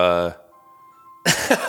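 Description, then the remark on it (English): A phone ringtone goes off in the background during a recorded conversation, a loud, buzzy, harmonic tone, then a thin, faint electronic note lingers for nearly a second before people start talking over it. “Well, don't mind this ringtone in the back.”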